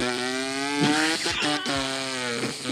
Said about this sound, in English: But yo, no, the cars that we're hearing now, I don't think they're souped up. I think they just have like their exhaust. The mufflers. Yeah, those shits are just like, it's just loud for no fucking reason.